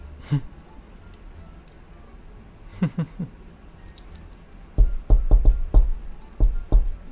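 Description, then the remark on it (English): Sharp knocks on a door: a few scattered raps, then a loud shave-and-a-haircut secret knock, five quick knocks, a short pause, and two final knocks, with no voices. “Shaving a haircut was a lousy secret knock.”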